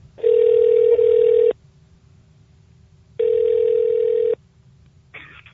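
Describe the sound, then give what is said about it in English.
A telephone line tone sounds twice as a call is placed, each a steady, buzzy beep lasting over a second, separated by a quiet pause of nearly two seconds, followed by a brief fainter sound at the end. “we are going to go ahead and get Scott on the phone to talk about adaptive technology”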